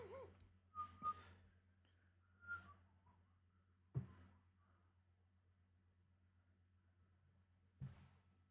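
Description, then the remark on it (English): A person whistles a few short, faint notes of Greensleeves in brief bursts rather than a flowing melody, with soft knocks and a steady low hum underneath. There is no talking. “whistling a merry tune then,”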